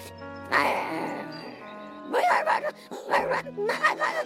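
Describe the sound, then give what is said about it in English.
A human voice imitates Toto, Dorothy's small dog, letting out a drawn-out whimper followed by a run of quick, yappy barks and whines, fairly loud. “The dog sounded like Bart, too.”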